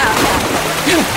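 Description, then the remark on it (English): Loud, continuous splashing and churning water as a person plunges into freezing cold water and thrashes about, with brief vocal sounds faintly mixed into the noise. “Why didn't you tell me the water was freezing cold?”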